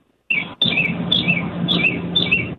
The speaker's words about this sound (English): I love the bird ambiance in the background.